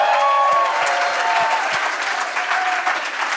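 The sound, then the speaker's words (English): A live audience at Cornerstone Church in Atlanta claps steadily for Jamar Tisby, a dense wash of many hands sounding loud, with a few faint whistles or cheers rising above the applause throughout. “Jamar Tisby, y'all, give it up for Jamar.”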